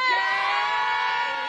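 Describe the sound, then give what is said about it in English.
A loud, shrill goat-scream sound effect blares for a second and a half, one sustained, strained bleat with a harsh, human-like wail, steady without other voices. “Screaming goat. That fucking goat.”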